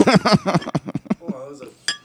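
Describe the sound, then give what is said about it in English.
A couple of soft, light clinks of bottles tapped together in a toast, brief, with voices murmuring around them. “What is this shit ass clinks that we're doing? Two pussy clinks.”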